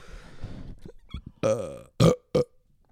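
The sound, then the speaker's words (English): A loud, croaking burp rumbles out, followed by two short, sharp bursts of belching sound, with quieter murmuring beforehand. “Ooh, that burp.”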